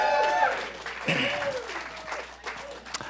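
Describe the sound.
A church audience claps for its pastors one morning in a dense, steady patter for about three seconds, with scattered voices and a few raised calls mixed into the applause.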